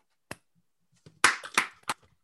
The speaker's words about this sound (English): All right, hold on, guys. I need three claps all at once. Ready?